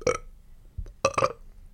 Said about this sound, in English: You're burping a lot.